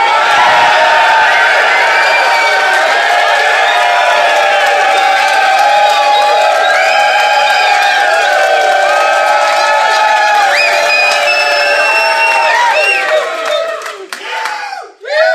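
A loud live audience at a .NET Rocks road-trip show in Dallas, Texas, cheers and whoops continuously, many voices shouting at once in a dense roar that holds steady for about fourteen seconds before cutting off.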